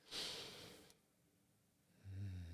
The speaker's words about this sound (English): I'm still making sure I'm deep and breathing into my belly.